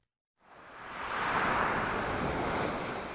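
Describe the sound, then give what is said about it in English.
Ocean waves around the small island of Kuza in the Indian Ocean wash in after a brief silence, swelling into a steady rushing surf that holds loud and broad to the end, with no voices. “Skies and ocean, both blue, surround the small idyllic island of Kuza in the Indian Ocean.”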